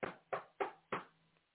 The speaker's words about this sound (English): So as she's sitting there, suddenly, she hears a knock at the door.